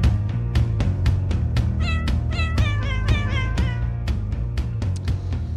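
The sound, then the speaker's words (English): A cat named Puppy meows insistently, a quick run of four or five whiny cries in the middle, over a steady low hum and scattered sharp clicks and knocks. No one speaks. “Do you see the way Puppy is trying to slit my throat in the background?”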